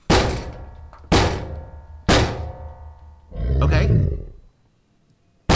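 A creature pounds against a door: three heavy, booming thuds land about a second apart, each ringing out briefly, followed by a low rumbling growl and then one more sudden thud at the end.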